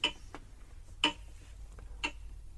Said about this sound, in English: We must have been next to his clock.